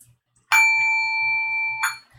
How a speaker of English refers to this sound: You want to hit the gong? Yes.